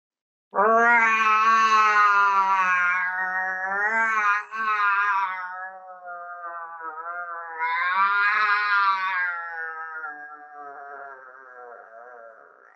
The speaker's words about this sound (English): And take this slowly. Give yourself time to really feel the roar and feeling again that energy coming through your hands with the roar. So I'm going to go ahead and do it. And if you're following along with me at home, you can do your own roar.